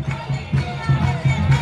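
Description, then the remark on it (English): A dense outdoor crowd of protesters gathers in the rain at La Fortaleza, the governor's mansion in San Juan, murmuring steadily, with rhythmic low pulses recurring every third of a second or so, like chanting or drumming carrying through the steady wash of many voices. “crowds are already beginning to gather behind you.”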